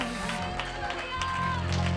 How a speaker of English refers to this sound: Woo! Oh, somebody clap your hands and just shout to God for a minute.